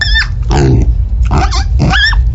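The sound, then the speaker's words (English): A 12-pound pig grunts and squeals in three quick bursts, mixing low throaty grunts with higher-pitched squeaks over a steady low background rumble. “The 12-pound pig is around for moral support, and in the heat of the battle, sometimes, that's all these guys need.”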